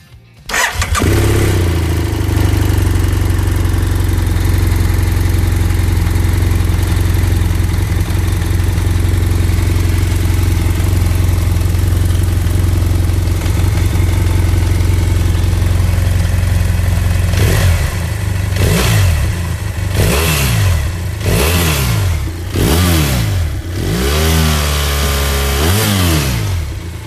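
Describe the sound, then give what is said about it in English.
The parallel twin engine of an F800 GS adventure motorcycle starts and idles steadily and loud, then gets revved in several sharp, rising bursts toward the end, with no voices. “Was clearly a parallel twin, not a boxer engine, and one of the most fuel-efficient, underrated adventure bikes out there, in my opinion.”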